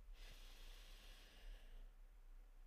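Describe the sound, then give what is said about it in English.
A long, steady inhale drawn in through the nose during a breathing exercise, a soft airy hiss lasting about two seconds, quiet, with no talking. “Okay, we're going to begin the breathing. Breathe in.”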